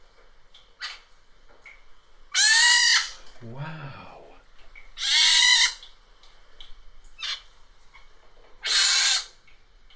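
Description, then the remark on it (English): A whole family of baby pine martens living in an attic give three loud, shrill, squealing cries, each lasting under a second and spaced a few seconds apart. A person briefly exclaims after the first cry. Recorded on a phone around mid-May. “Baby pine martens. She had a whole family in her attic.”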